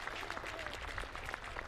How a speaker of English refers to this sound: Okay, it's a long walk here for Coop from center field to the dugout area as he leaves the game injured. So resetting things, it'll go as a hit. The 10th hit of the day for BYU. As the crowd applauds Coop.